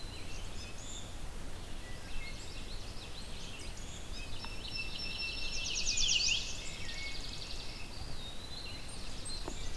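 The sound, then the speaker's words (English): Eastern wood-pewee song: faint slurred whistles rising and falling amid other soft bird chirps, with a brief brighter burst of notes midway over a low outdoor rumble. “So there's an eastern woodpewee here too.”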